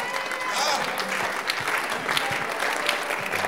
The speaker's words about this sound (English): If you don't clap well, I just stop preaching. Clap for Jesus well.